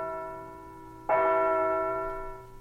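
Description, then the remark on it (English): A hall clock chimes as it strikes eight o'clock. A steady metallic tone already hums, then one loud, rich bell strike rings out and lingers, slowly fading, with no voices. “It's after dinner now, and as the clock in the hall strikes 8...”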